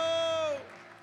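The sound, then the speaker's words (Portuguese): A loud, held vocal cry rings out and slides downward, then gives way to a church audience's steady, moderately loud applause in worship of the Lord, mixed with crowd noise. “Dê um brado ao Senhor e aplaudo neste lugar e adoro.”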